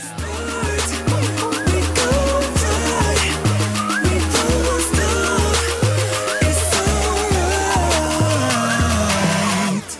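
A birthday song plays loudly and continuously, driven by a punchy, steady bass line stepping through notes in a quick rhythm beneath bright, busy layers of instruments.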